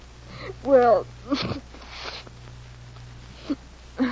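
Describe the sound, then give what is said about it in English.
A wavering, whimpering sob gives way to short, breathy bursts of nose blowing and sniffing, with a couple of faint sniffs trailing off at the end. “Blow your nose and tell me why a writing fella like Will Calder suddenly comes down with writer's cramp and can't send you even a postcard.”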